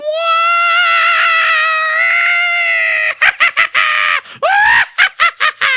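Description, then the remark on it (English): Ten young men scream loudly: a long, high-pitched sustained wail for about three seconds, then a rapid string of short, choppy yelps and whoops. “And the 10 Jungleiten started to scream more.”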